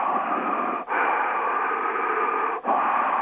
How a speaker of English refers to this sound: Okay, sir, we really can't have the long breathing moments because it's a little offsetting.